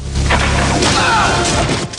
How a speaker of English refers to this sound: Rambo fires an arrow, skewering the soldier.